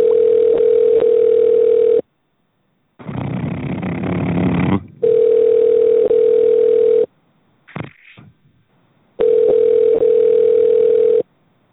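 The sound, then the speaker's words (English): A steady, mid-pitched telephone tone sounds in three long bursts of about two seconds each, separated by stretches of rough, noisy line static and a brief click, while a call to Giant Eagle is transferred to customer service. “Please hold while I transfer your call to customer service.”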